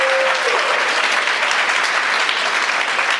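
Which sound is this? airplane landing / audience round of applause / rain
audience round of applause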